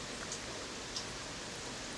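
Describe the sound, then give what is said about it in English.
Steady rain falls, a continuous soft hiss with a few faint drips landing on a surface, heard from a porch on a chilly day, with no voices or other sounds. “Listening to the rain and watching the wildlife.”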